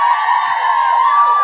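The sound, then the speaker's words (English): A live audience cheers for Pierce Brosnan in a steady, loud roar of many voices, with whoops and shouts blending into one continuous wash of sound that holds without a break. “Can I have a cheer for Piers, please?”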